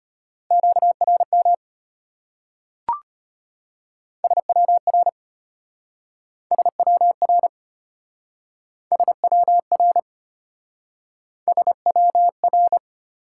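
Fast Morse code tones at about 25 words per minute, at a single steady pitch, keyed in five clipped bursts of dots and dashes with short pauses between, plus one sharp click early on. No voices.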